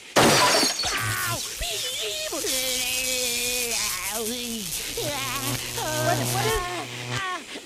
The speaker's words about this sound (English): I was just thrown into my Zenith Space Command television set at Entertainment Center. I broke the glass. It's all smashed.